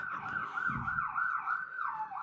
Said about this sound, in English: No, that was an interesting siren.